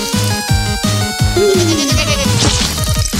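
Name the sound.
goats bleating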